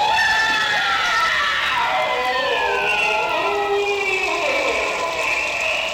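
A scream from the sound effects album: a long, shrill scream wails on without a break, its pitch wavering and sliding up and down, with several overlapping voices layered into one eerie, loud howl.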